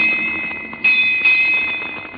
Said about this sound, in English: Come out fast when the 8 bell has struck.